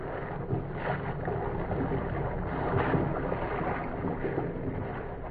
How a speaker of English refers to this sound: what was happening on the darkened deck of the incoming liner, some 300 miles at sea, their problem would have been answered. Two men walked the deck.